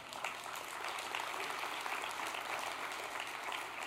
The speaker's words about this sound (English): By the way, this is an awesome crowd for Labor Day. You guys should give yourselves a hand.